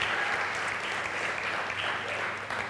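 A church audience claps steadily for a few seconds in applause for the band, a dense, even patter of many hands at a consistent loudness with no voices standing out.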